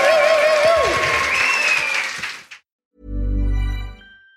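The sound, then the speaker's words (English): A live audience claps loudly for a couple of seconds, with a few cheers or whistles mixed in. The applause then cuts off, a short pause follows, and a brief, deep tonal burst plays. “Yeah, please give yourselves a round of applause.”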